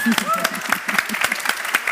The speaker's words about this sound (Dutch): Mag ik nog een applaus